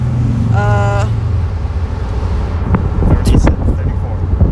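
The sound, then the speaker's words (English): Loud, constant wind buffeting and low road rumble from riding in the back of a pickup truck in the middle of the night, with a brief high whine early on and scattered rattles and thumps later. “At the moment, we're in the back of a pickup truck in the middle of the night.”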